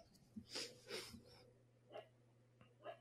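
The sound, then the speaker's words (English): A dog whines quietly in the room, a few short breathy whimpers and snuffles spaced irregularly over a faint steady hum, with no one speaking. “You could probably hear the dog again.”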